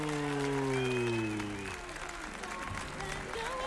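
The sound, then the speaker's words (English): Audience applause opening The Dr. Joe Show rings out as a steady, dense wash of clapping, with a tonal musical sting sliding downward over the first couple of seconds before the clapping continues alone. “There's something about applause that is just overwhelming.”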